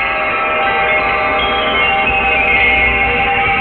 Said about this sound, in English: The world is full of chimes.